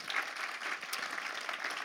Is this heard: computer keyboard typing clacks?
no